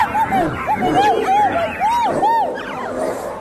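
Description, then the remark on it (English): A small dog, Poppy, yelps over and over as a husky grabs her by the throat: a rapid run of six or seven high-pitched, rising-and-falling cries with a frantic, distressed edge, fairly loud against a noisy background. “Poppy was yelping”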